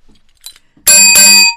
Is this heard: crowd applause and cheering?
no